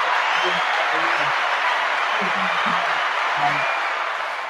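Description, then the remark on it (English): Steady, dense clapping fills the whole stretch at a fairly loud, even level, with a few low voices murmuring underneath before it begins to ease off at the end. “I'm applauding the reconciliation, not the fallout.”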